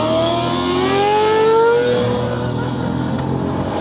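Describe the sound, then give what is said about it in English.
A sport motorcycle engine revs hard, its pitch climbing steadily as it accelerates, then settling into a loud, rough drone. No voices, just the engine. “What is that, an R1?”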